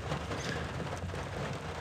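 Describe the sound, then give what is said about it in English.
Light rain falls steadily on a very dark, cold night, a soft, even hiss of drops spread across the whole moment with no breaks or distinct patters, continuous, with no voices present. “I remember the night being much like this one, a bit rainy, very dark, cold, you know, middle of winter.”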